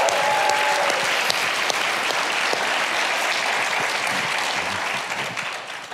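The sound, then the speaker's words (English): A church audience bursts into sustained applause and cheering to welcome two guests, dense steady clapping with a few whoops, holding loud for several seconds before starting to taper off at the end. “Just cheer for them.”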